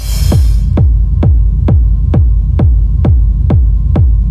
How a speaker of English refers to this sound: This is that. It's a kick drum recorded in a cave.